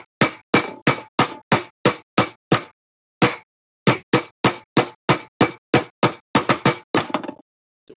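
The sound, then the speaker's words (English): A loud series of sharp knocks in a quick, uneven rhythm, like someone rapping on a door; a short pause midway, then another burst of knocking. No one speaks. “What's the rhythm of your knock?”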